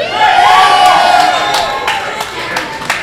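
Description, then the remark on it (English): A loud crowd at a night event at the Waiting Room Lounge roars and cheers continuously after being asked to make noise, a dense wash of voices with high whoops and whistles cutting through, plus scattered sharp claps or bangs near the end. “And this crowd is out of hand tonight. I can't even hear myself think.”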